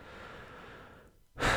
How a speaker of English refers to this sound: And I'm going to clear my throat first. Excuse me.